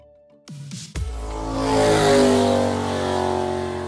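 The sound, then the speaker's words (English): Small go-kart engines start up and rev hard at a professional go-kart racing track, the Dodge City Speedway in Howe's Cave: a sputtering burst followed by a loud, sustained buzzing whine that swells and holds steady, dominant with no talking. “It's something you grow up as a kid wanting to try, and all it takes is a little engine revving.”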